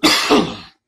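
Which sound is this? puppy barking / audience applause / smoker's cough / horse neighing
smoker's cough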